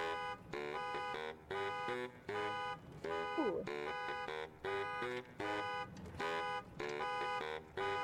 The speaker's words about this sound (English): They play it along with a car horn. Listen, this is so amazing. You were talking about just fun songs. This is in there. Just let it roll. So it's just a car horn. So far, it's my nightmare.